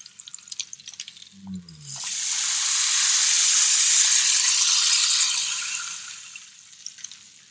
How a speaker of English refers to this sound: I'm just starting to rotate the rain stick, and what this does is it kind of gives your rain stick a bit of a flow and a bit of a rhythm.